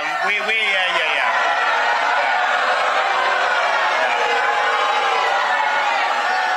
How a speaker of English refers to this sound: So after saying, well, thank you, the crowd starts booing this woman who cursed at Governor DeSantis.